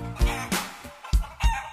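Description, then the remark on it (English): Fifteen chickens cluck in a quick series of short, sharp bursts, several clucks in a row, fairly loud, with a light musical backing underneath. “15 chickens cluck cluck cluck.”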